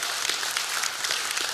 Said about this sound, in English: Hey, while you're clapping really fast, I want you to put your hands together because I have an announcement to make that is a praise to God.